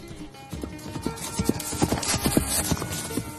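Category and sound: animal, horse hooves galloping away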